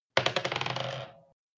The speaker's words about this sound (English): 10. With your bonuses or just straight 10? With everything. I rolled a 7 plus 3.